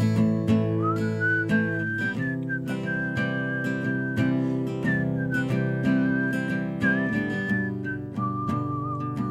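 A person whistles a sustained, smoothly gliding pop melody over a steady instrumental backing track with rhythmic percussion, the whistle clear and prominent throughout with no talking.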